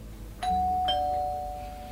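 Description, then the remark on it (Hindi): A doorbell chimes twice in quick succession, a bright ding-dong whose second tone rings out and slowly fades. It sounds clear, with no voices over it. “हर रोज कोई घंटी बजाकर भाग जाता है, every day someone rings the bell and runs away.”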